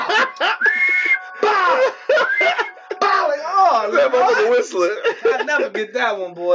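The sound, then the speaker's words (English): A voice imitates the whistling swish of a water hose swung to whip someone, with repeated rising and falling pitched swoops. Loud, with some laughter and vocal noises mixed in. “Water hose, I'll never forget that bitch, because that bitch was whistling every time it hit my ass.”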